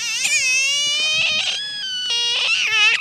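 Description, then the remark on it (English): An animal impressionist imitates a frog with a run of loud, squeaky, high-pitched warbling calls, with short pauses between bursts and no speech. “The answer is a frog.”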